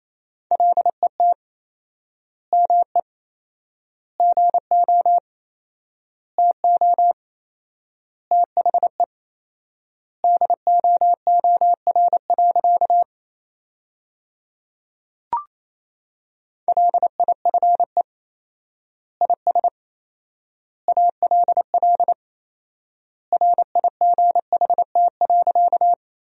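Morse code at 28 words per minute with fourfold word spacing, sending sentences built from the top 300 words, in a single steady mid-pitched tone: rapid dots and dashes forming word groups separated by clear pauses, with no voices and one brief click partway through.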